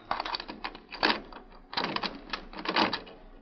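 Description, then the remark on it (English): Rapid metallic clicks and rattles as a lock is worked open, with a few heavier clunks as the door is pulled. No voices. “Wait, mister, don't shoot the lock. I'll open it up.”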